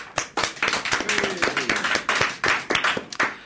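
A crowd of workers assembled in their hut at the docks applauds, many hands clapping in a dense, steady patter that stays fairly loud for a few seconds, with a faint voice or two murmuring underneath.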